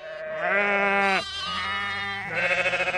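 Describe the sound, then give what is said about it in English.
Sheep and lambs of Tom Milburn's flock on his British farm near the Church of St. Giles, Chollerton, bleat in overlapping calls as they are fed on a Sunday morning, a steady wavering bleat joined by higher, quavering lamb cries that tremble rapidly near the end, loud with no talking. “His lambs are healthy and active.”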